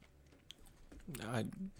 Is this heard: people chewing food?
yes